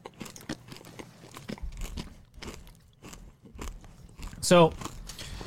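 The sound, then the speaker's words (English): Steady crunchy chewing of grape Nerds candy from small individual boxes, with sharp crackling bites repeating irregularly over several seconds and one brief louder burst near the end. “Yeah, go ahead and eat the grape.”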